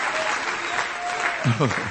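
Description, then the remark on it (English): A standing church audience claps steadily in praise to the Lord, a dense, continuous wash of hand claps, with a voice rising over it near the end. “Come on, stand to your feet and clap your hands to the Lord and give Him praise.”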